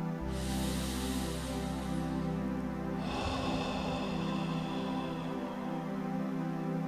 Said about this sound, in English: Imagine those rib cage expanding outwards as you breathe in, contracting back to normal as you breathe out. Breathing in and out to the count of 3.